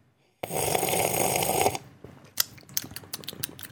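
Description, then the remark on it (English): A long, loud airy slurp of soda during a taste test, lasting over a second, followed by a scattered series of sharp crackling pops and clicks like fizzing carbonation. No one speaks. “Let me try a different sipping method, maybe.”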